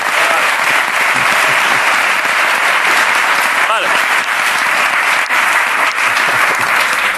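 A TV show's studio audience claps loudly and steadily for about seven seconds to welcome a guest, a dense, even wash of applause with a brief whoop rising out of it around the middle.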